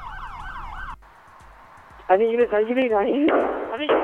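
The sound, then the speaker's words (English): A wailing siren gives way to a rapid series of sharp gunshots popping in the background of a police radio communication, continuing under a crackly law enforcement radio voice that then talks over them as officers respond and call in for backup at Lakewood Church. “you hear gunshots in the back of that communication. as law enforcement is responding and calling in for backup”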